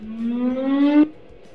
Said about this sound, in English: Told you guys might hear the fire whistle. Is it too loud? Will you have to edit it out? Oh, my God. Where are we approaching? It sounds like Stalingrad. I don't know how many times it'll go, but just wait and start back up whenever it ends.